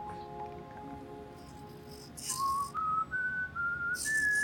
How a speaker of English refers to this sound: That's the song that Dad used to whistle in the workshop.